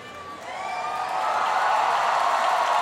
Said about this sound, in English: That wonderful cheer is because the house lights just went off. There they are.